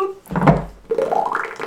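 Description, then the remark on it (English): A short bubbling water transition effect: a deep, muffled splash-like burst followed by a rising, warbling gurgle, fairly loud, with no voices. “What a transition. We're at sea.”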